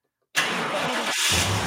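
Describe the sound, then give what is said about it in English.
A car engine abruptly cranks to life after a moment of silence, then keeps running with a steady, fairly loud mid-pitched rumble and a brief dip before settling into a steady idle. “You got to cut the car off.”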